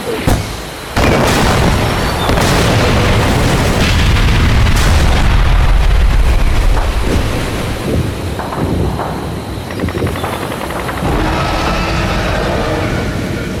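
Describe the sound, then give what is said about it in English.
A dense, continuous barrage of battle explosions and artillery fire on a beach as a war begins, with heavy low rumbling and repeated sharp booms and cracks layered over each other, loud throughout with no speech. “On the beach, you see fire rain from the sky as the war begins.”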